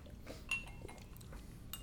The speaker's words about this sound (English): Let's cheers it, and then let's ruin our childhoods. Cheers.